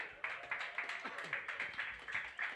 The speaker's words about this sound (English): Round of applause, man. That was dope.